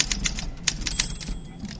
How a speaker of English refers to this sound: Yeah, but give us some typewriter